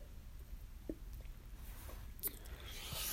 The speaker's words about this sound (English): Gonna grab a sip of coffee real quick here, folks.